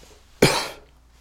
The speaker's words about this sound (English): Sorry about that. Sorry about the smoke. I know I hear you coughing.